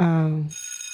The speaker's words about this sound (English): Like, we ain't never ring the bell.